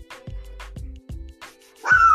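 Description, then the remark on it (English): A dog barks several times in short, evenly spaced bursts, muffled, ending with a louder, sharper, higher-pitched bark. No one is speaking. “This damn dog be wilding. ain't no other dog even barking no more.”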